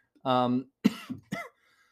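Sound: coughing fit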